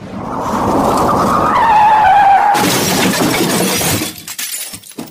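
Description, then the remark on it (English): Tires of an autonomous vehicle screech in a long rising skid, then a sudden loud crash bursts out with glass shattering and debris clattering as it fades. No one speaks. “about to jump into the autonomous vehicle and decide, is he going to crash and kill himself or someone else?”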